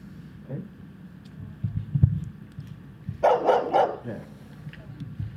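An overprotective Rottweiler lets out a quick burst of three loud barks, sounding slightly tinny like video playback, over a low rumbling background with some faint indistinct murmur.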